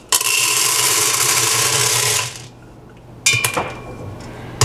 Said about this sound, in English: I have a half a cup already in my popcorn box, and we just scoop a half a cup out. All right, and now we will pour the popcorn into the popper.